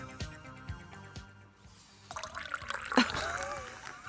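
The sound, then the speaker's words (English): Champagne pours into a glass with a bubbling, fizzing hiss and rising gurgle, following a short stretch of soft background music that fades out. “Oh, thank you very much for the champagne.”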